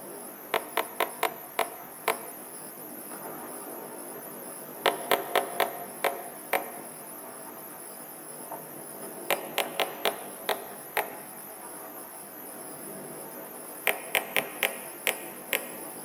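Sperm whale coda clicks, a way of identifying the group the whales belong to: four short bursts of sharp, dry clicks, each a patterned run of about five to seven, separated by pauses over a steady background hiss.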